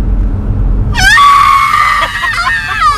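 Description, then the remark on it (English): A person imitates a blood-curdling scream away from the microphone, a loud, sustained, wavering high-pitched shriek that starts abruptly after a second of low background rumble and lasts about two seconds, trailing off unevenly. “I wake up and I hear this blood-curdling scream.”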